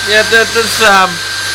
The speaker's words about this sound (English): I haven't got anything queued up. I'm just going to do a bit more vacuuming. Sorry.